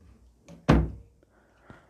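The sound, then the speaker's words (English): A single heavy thud as a door swings shut, with a softer knock just before it and a faint bump afterward in an otherwise quiet room. “The door.”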